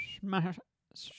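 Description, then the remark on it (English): A brief, thin whistling tone slips out on a sibilant as a person starts saying the word 'Shmashan', followed by a short spoken syllable, a pause, and a hissy 'sh'-like fricative, all fairly quiet. “Well, I think it's easier for me because every once in a while I do have a little whistle come out.”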